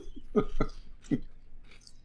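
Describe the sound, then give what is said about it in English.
Crisp crunching of Doritos tortilla chips, three distinct bites in quick succession followed by fainter chewing, with no one talking. “All right, so that's how we're easing into this episode, the sound of us crunching.”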